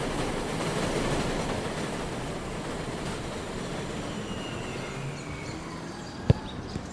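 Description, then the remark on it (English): A 7 train on the elevated subway rumbles past overhead in Sunnyside, Queens, New York City, on an early winter night, in a loud, steady roar of wheels and rails that eases slightly toward the end, punctuated by a sharp metallic clack. “In Sunnyside, Queens, the 7 train passes by overhead.”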